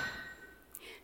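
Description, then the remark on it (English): A single sharp metallic clink rings out as a heavy iron hammer strikes a huge spike, short and fairly faint against a quiet, lingering ringing tone, with no one speaking. It happens during a passion play recreating Good Friday, where an actor playing a Roman soldier hammers a spike at the wrists of the actor playing Jesus on the cross. “And a Roman soldier, he took a huge spike and a heavy iron hammer, and he placed them into Jesus' wrists.”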